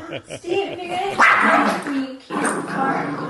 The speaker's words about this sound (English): Yeah, the dog yells at me, the wife yells at me.